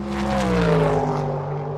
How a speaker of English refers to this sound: It's a little bit like when a car races past you, the sound changes and gets lower in pitch.